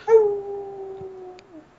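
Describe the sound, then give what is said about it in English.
A single long, wolf-like howl at the moon holds a steady pitch for over a second, then dips downward as it fades out. It's clear, with no talking. “Or you can just howl at the moon, and eventually we will we'll find you.”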